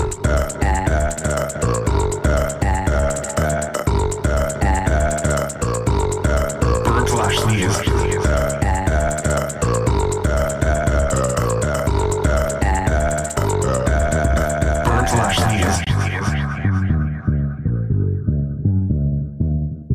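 A loud, continuous one-minute song built entirely from burps, pitch-shifted up and down into a rhythmic beat and melody, with dense repeating pulses throughout before fading at the end.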